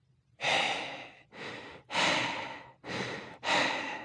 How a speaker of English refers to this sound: It was her breathing.